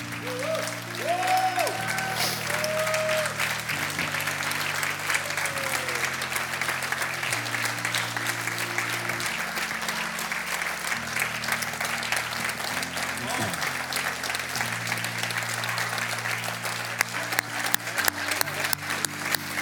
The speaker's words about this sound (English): I want all the ladies to stand, and all the men are going to clap super, super loud, and we're going to give you the credit that is due.